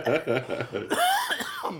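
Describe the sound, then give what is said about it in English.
A fairly loud run of rough coughs in quick succession, trailing into a strained, voiced wheeze or groan, with no speech. “Here comes that cough.”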